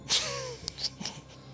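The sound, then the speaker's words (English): A loud breath blasts into the microphone in one short, hissy burst, followed by a few faint clicks and soft noises in an otherwise quiet space. “Don't breathe right into the mic. I'm sorry. I'm a heavy breather.”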